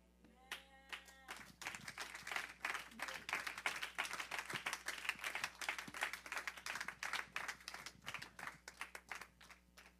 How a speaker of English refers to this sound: Hallelujah. Another big hand clap to the Lord God Almighty for the message. Hallelujah. Another hand clap for the messenger.